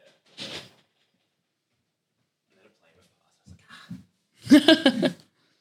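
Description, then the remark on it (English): A door is pushed shut with a brief rustle and a couple of soft low thuds, followed by a short burst of a voice. “I'm just going to close this door real quick because I can hear the cars.”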